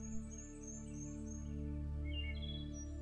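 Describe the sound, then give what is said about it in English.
Birds sing high in the forest canopy, thin repeated chirps and whistles drifting in over a steady, low droning hum, with no one talking. “Take some time now to walk as you listen to the birds high up in the canopy, and continue to relax more and more deeply with each step you take.”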